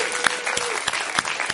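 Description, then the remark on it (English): A standing church audience claps steadily for the worship team and sound crew, a dense, continuous patter of applause with a few sharper individual claps standing out, moderately loud. “Let us bless you with a hand of applause.”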